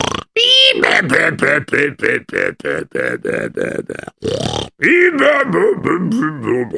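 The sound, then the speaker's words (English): A voice imitates the loud snoring of a sleeping guard: a rapid run of rhythmic grunting snorts, followed by a longer wavering, drawn-out snore. “What's that I hear? Snoring? Who could be snoring here?”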